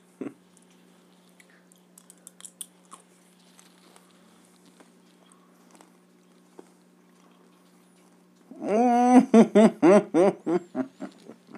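Soft chewing of Skittles candy with small crunchy clicks for several seconds, then a loud burst of rhythmic, pulsing vocal sounds like laughter takes over near the end.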